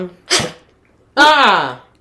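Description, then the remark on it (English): A single loud sneeze: a sharp breathy burst, a brief pause, then a strong voiced blast that trails off. No other voices or sounds around it. “You know you only got a four cough or a four sneeze quota.”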